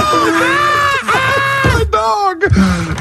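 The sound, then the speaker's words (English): A person loudly imitates an injured dog, letting out a series of high, strained yelps and whimpering cries in quick succession, with no other talking. “A screaming injured dog, yep.”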